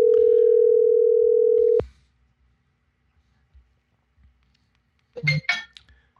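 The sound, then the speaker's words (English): A steady, loud electronic ringback tone hums for about two seconds as a phone call is placed, then the line goes quiet before a brief clatter, like a phone being picked up. “Now, let's see if Steve-O's got his phone on. Let me give him a call here.”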